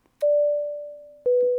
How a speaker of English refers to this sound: Oh, is this where the beep boops go? Or is that later? This is where the beep boops go.